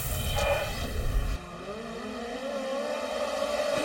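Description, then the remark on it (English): Race car engines roar around a track in a 5-lap dash, with Kyle Larson's black 97 car battling Michael Pickens and Justin Grant; a loud rumbling burst gives way to a steady, rising high-pitched whine as the cars speed past. No one is speaking. “drivers who lost positions and were running last had to leave the track”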